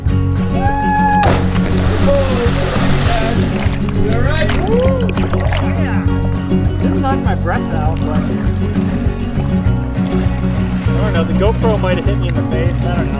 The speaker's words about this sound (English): admiring the view from the river, and then me jumping off a cliff and launching myself into the water, basically.